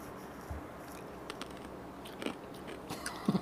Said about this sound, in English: Ice. I'm eating ice. Oh, crunching. Crunching on ice. Okay. I eat ice.